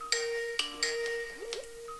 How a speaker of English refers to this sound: Your Skype's ringing. I think I muted it.